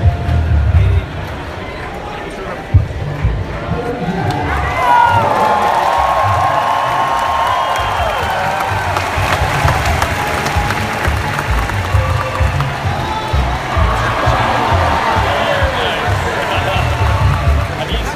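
A large convention crowd roars steadily right before a Force Awakens trailer starts, a dense wash of cheering, clapping and excited shouts that holds loud for the whole stretch, with scattered whoops rising above the din.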